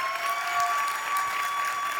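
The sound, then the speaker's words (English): Steady applause from a crowd, dense and even with continuous clapping throughout and no voices standing out above it. “Y'all clap it up for my beautiful wife.”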